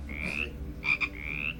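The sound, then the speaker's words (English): A person imitates a toad with three quick, chirpy croaks in a row, the middle one broken into short pulses, fairly loud over a faint low hum, with no talking. “And you are also a toad now.”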